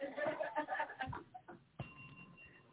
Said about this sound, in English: I'm going to give you the real bell. You having fun today. You want the big, you get the big bell.